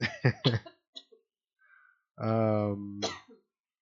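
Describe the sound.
A quick burst of three harsh coughs up close, then a brief pause and a strained, drawn-out voiced groan like someone recovering from choking.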